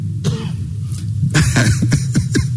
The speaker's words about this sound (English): You know, when these times come, you find you're coughing more than you don't know whether it's your mind or whatever.